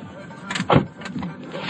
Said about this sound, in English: So I'm going to go and collect her in San Juan, and we're going to have a spa day. So I'm getting in the car.